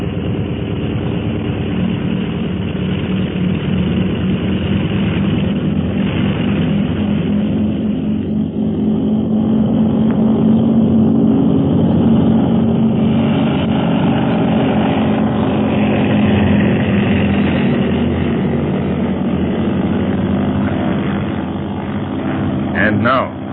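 An aircraft engine drones loudly and continuously with a deep, buzzing propeller roar, its steady tone swelling slightly in the middle as the plane throttles up to take off.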